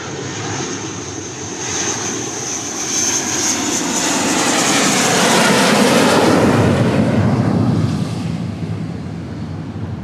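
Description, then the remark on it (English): A loud jet aircraft roars overhead, a broad rushing rumble with a high whine that swells to a peak around the middle and then slowly fades as it passes, with no voices. “There you have it. Jet flyovers constantly.”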